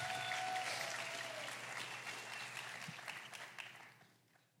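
A crowd claps in a strong, dense round of applause that holds steady for several seconds, then thins and fades out at the end. A faint whistle-like tone rises briefly early on.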